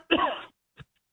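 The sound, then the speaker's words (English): A harsh throat-clearing cough lasting about half a second, followed by a brief softer cough and the start of another, with no talking. “Besides coughing.”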